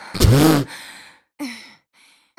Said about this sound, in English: Stop breathing like that.